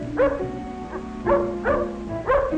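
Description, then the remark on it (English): A dog, Tippy, a friendly dog, barks four or five times in a loose, uneven rhythm, moderately loud, with short yappy barks and no talking around them. “Tippy is a friendly dog.”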